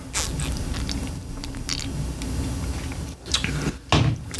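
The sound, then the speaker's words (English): Quiet sips and swallows of craft beer after a toast, with small wet mouth sounds and faint creaks, ending in a couple of louder gulps; no one speaks. “Let's get a sip on this. Cheers.”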